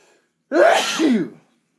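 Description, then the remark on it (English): A single loud sneeze bursts out after a moment of silence, a sharp, breathy explosion with a voiced tail that fades quickly into quiet. “Excuse me.”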